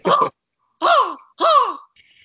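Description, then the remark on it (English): A person imitates an angry crow with three loud, harsh caws, each about half a second long, separated by short pauses. “They hired me just to be a crow.”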